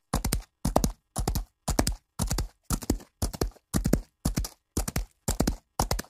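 Horses' hooves clip-clop in a steady, even rhythm, about eleven distinct beats over six seconds, fairly loud with nothing else in the background.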